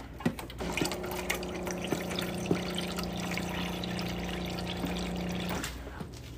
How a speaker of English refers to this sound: I'm sorry, that was pretty. That was probably pretty loud for you guys because you guys. I was using my hand with the phone in it to put that water in, and forgot this microphone.